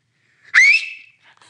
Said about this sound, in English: He's going to whistle. I don't know how the audio king is going to fix that, but like he's going to whistle and people's ears are going to perk up.